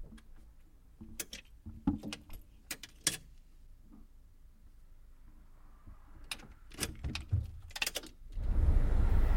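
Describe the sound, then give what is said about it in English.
Keys jingle and click as a man slides them into a truck's ignition without turning it, two bursts of metallic rattling, followed by a broad rushing rumble at the very end. No one speaks. “He slides the keys into the ignition, but doesn't turn it yet.”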